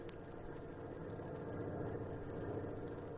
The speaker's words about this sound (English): At 7:20 sharp, a truck pulled up at the corner. The driver remained at the wheel.